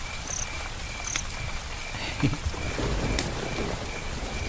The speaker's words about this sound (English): And after a couple of minutes of the thunder getting closer and maybe a little bit more regular, there was the very smallest drops that you could hear kind of dropping on leaves and things. And now we've got to this. Rain's quite heavy.